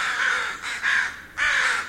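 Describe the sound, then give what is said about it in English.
Crows caw harshly in quick succession, several loud, raspy calls with short gaps between them, sounding agitated as they scold a person wearing a caveman mask on the University of Washington campus. No voices are heard. “I had a big group of birds on me scolding and coming at me when I wore that caveman mask.”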